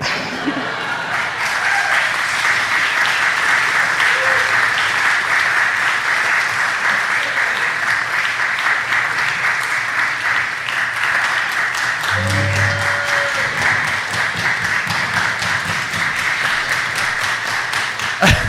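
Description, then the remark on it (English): Sustained, loud applause from a Story Slam storytelling audience, a dense steady wash of many hands clapping for nearly twenty seconds, with a brief low tone surfacing partway through. “You guys are so good about keeping that clap going.”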